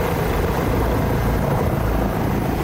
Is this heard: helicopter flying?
yes